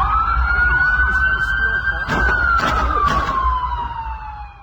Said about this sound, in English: Now, a witness captured video of part of the pursuit from the dealership at about 4 o'clock. Now, take a listen. You can actually hear the rounds being fired at a man who is running away from police down the highway. Take a listen.